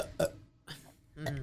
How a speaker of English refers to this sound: Burp again. Okay, do it.